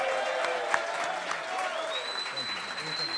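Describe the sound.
Steady, dense audience applause for about three seconds at an even loudness, with crowd voices cheering through it and a high whistle-like tone joining in partway.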